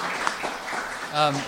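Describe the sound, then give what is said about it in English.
An audience applauds a presenter after a presentation, before questions, a dense, steady patter of many hands at moderate loudness, with a brief voice rising over the clapping toward the end. “Well, first of all, give you a round of applause.”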